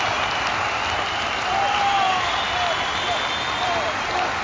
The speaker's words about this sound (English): Please give me just an uproarious applause in post-production